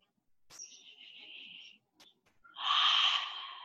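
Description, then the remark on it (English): A person breathing outdoors: a deep breath rushes out loudly near the end, preceded by quieter airy sounds and a couple of faint clicks. No one speaks. “And taking some breaths, breathing the air.”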